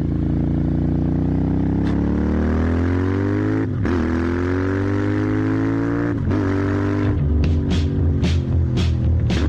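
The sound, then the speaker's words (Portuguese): A Royal Enfield Classic 350 motorcycle engine runs loud, its pitch climbing through two gear changes before a series of sharp, rhythmic throttle blips near the end. “Chegou a nova Royal Enfield Classic 350, reunindo as tradições e heranças do passado, uma obra-prima do design atemporal, proporcionando uma experiência de condução refinada e segura para todos os seus passeios.”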